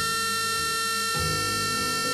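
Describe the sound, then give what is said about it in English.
A loud, harsh electric buzzer drones steadily for about two seconds in a courthouse, its rasping tone holding unbroken, with no voices present. “A buzzer burst the silence.”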